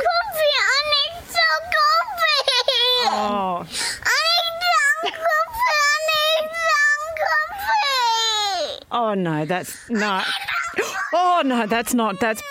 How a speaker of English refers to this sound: I feel like I've blocked out those tantrums. Did this happen?